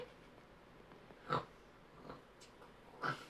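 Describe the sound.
A person imitates a pig, making two short snorting oinks about two seconds apart with a fainter one between them, against a quiet background.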